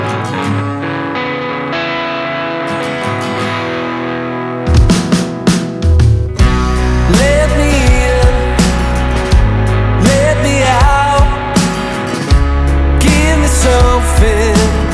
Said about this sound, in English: Britpop style, jangling percussion, rousing vocals and a rhythmic guitar that drips with heart and passion.